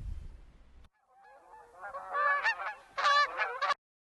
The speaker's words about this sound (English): Another note, the official name of this bird is the Canada goose. So unless you are in Canada or you know the goose to whom you are referring to lives in Canada, then you can call it a Canadian Canada goose.